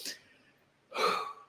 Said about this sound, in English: by breathing in that way.